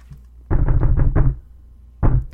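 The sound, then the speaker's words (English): Heavy, muffled thudding knocks from upstairs, made by a person or people upstairs: a rapid run of about five blows followed by a short pause and one more, deep and booming. “I screamed, just as much to the thudding upstairs as to the deafening pulse in my head.”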